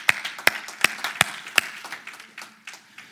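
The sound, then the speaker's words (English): A church audience claps hands for everyone for being there, with a few sharp, steady beats standing out at first before the applause loosens into scattered, softer claps from the crowd. “Let's give everybody a hand clap now for being here.”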